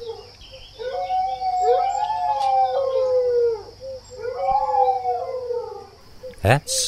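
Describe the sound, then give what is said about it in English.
Several dogs in woods howl from all directions in long, rising and falling overlapping wails, answering a howl, sounding somewhat distant, with a steady high hum behind them and a sharp knock near the end. “Now we could hear dogs in all directions answering the howl.”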